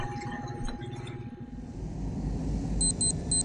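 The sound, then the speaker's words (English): A series of short, high electronic beeps from a shuttle's control console, signalling a long-range distress call, repeats evenly near the end, over a low, steady rumbling hum, after a faint sustained tone at the start. “only to be awakened by a slow, steady beep from her control console.”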